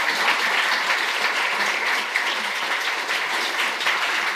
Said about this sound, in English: So those guys have done a lot to actually make this happen tonight. So give them a round of applause, please.